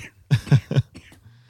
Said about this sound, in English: Yeah, you've got the cough that I get once a year. Yeah. It's a real tickle. I get the tickle cough.